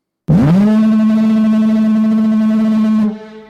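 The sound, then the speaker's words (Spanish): One long, loud lighthouse foghorn blast, a deep droning tone that swoops up at the start, holds steady for about three seconds, then quickly fades away. No voices. “La sirena llamó.”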